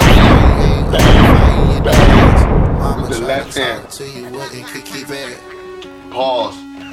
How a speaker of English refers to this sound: They said the gunshots was too much. I don't care.